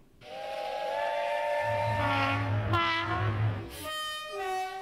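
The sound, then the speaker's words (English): A train horn sound effect sounds in long sustained blasts over a rumbling, chugging engine and hissing steam, loud, with a sharp whistle tone near the end. “And first up is the lame train.”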